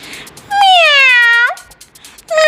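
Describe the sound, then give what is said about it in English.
A cat resting under a tree on a farm gives one long, loud, drawn-out meow that slides down in pitch, then a second meow begins just as the sound cuts off, with no talking. “Soon the dosa rolled into the farm where a cat was resting under a tree.”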